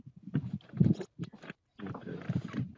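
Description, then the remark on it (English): An aggressive cow grunts and bellows in rough, closely spaced bursts while pushing toward its feed, the noises loud with a brief pause midway. “Jeremy's got to get the cow. He's sorry. They're aggressive.”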